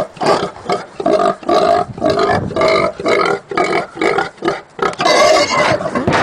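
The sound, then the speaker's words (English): Pigs oink and grunt in a rhythmic, tune-like sequence of loud bursts, the squeals rising and falling as if following a melody, with no talking. “Tickets to the first person who can identify what song these pigs are singing.”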